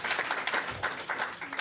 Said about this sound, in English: Wiggle your seat. Just clap your hand. Do something. Just for me.